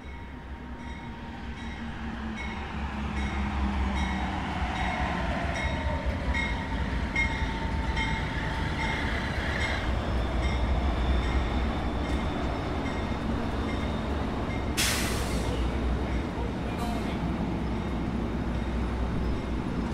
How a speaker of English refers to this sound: Train that's just arrived is making a special stop. It's actually going on to Oakland. Our train is due in a few minutes.